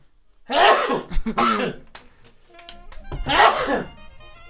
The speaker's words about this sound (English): I got to sneeze. Uh-oh. Bless you.